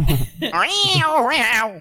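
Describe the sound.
A person imitates a cat meowing, a loud, drawn-out, wavering meow that dips and rises again before trailing off, preceded by a brief breathy noise.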